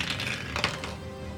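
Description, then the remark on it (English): Dice clatter briefly across a hard surface, a quick run of small sharp clicks and taps, fairly quiet, with no voices, as they are rolled for a strength check in a game, landing on 10. “I rolled something, but he is going to roll do a strength check right now.”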